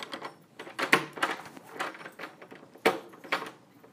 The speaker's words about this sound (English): Okay, can I lock the door? Yes.